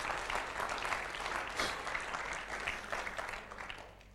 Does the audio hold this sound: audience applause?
yes